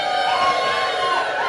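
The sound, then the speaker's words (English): A live audience at a stage show lets out a sustained, unified "woo" when asked, many voices blending into one loud, bright, rising-and-falling shout that fills the whole moment without pause. “Audience, can I get like one collective woo from you?”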